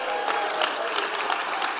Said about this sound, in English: Amazing. Even some people in Tuaco clapped then. That was great.